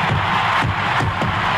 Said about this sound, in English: A sellout crowd is cheering Henry Aaron, the home run king of all time.